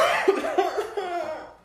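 cough

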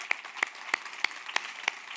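audience applauding

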